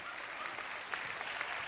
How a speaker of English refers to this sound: No, no. Okay, you can clap. That's fine.